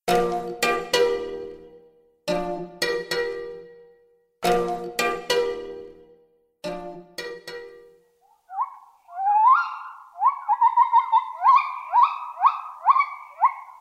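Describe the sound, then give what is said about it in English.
A few loud, ringing harmonic bursts give way to gibbon calls in the dense rainforest of Borneo: rising, swooping howling whoops, able to carry up to 2 miles, that speed up into a rapid, climbing series of hoots, with no talking. “Those orangutans in Borneo share habitat with their smaller primate cousins, the gibbons, whose howling calls can travel up to 2 miles across dense rainforests.”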